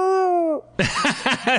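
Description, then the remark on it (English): A person vocally imitates a giraffe call: a steady, sustained tone for about half a second, a brief pause, then loud, raspy, warbling squeals that rise and fall several times. “I would pick that as a giraffe sound, yes.”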